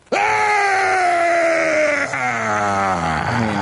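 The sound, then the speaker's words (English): Alex Jones lets out a long, loud, sustained scream, his voice straining and wavering in pitch before breaking and trailing off into a ragged yell. “Boy, you talk about a Dean scream. That way worse, yeah. That Jones insanity is, wow, that is something else.”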